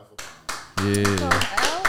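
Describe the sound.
A few slow, evenly spaced hand claps ring out, sharp and fairly loud, before a man's voice starts talking over them.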